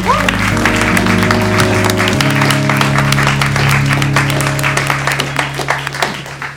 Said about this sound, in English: And a round of applause for our winning team tonight. It's the Terminator Salvation Army on 41 points.